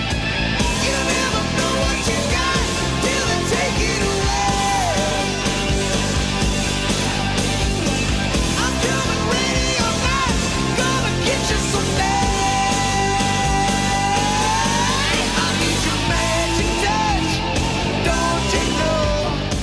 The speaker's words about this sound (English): And then it brings you back to the driving. You never know what you got till they take it away. And it's that driving beat with him kind of screaming those lyrics.